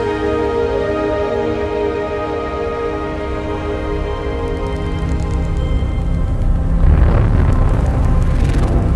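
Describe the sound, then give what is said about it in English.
Sonified gravitational waves from merging black holes, a lighter black hole falling into a very heavy one and getting faster and louder as it falls in: a loud, layered electronic drone of steady stacked tones that swells into a deep, rumbling burst toward the end, with no voices. “Those are the gravitational waves. They are literally the sounds of space ringing.”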